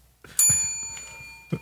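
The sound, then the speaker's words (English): A bell is struck once and rings out with a bright, shimmering tone that slowly fades, fairly loud, followed near the end by a soft low thump. “Nice bell.”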